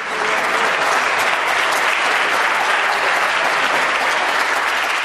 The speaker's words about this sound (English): So let's hear that again, PC MPPs, but this time with a little bit more enthusiasm on the clapping.